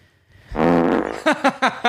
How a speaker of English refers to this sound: Does that make you fart? I'm sure it sounds like something that would make you fart, but I just wanted to make Jack laugh.